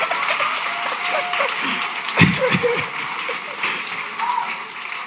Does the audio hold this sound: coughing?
no